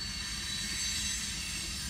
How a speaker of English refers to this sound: I think after living here now, I've realized there's a lot of train activity.